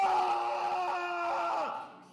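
A man lets out a single sustained, strained scream lasting about two seconds, loud, trailing off at the end with no other sounds around it.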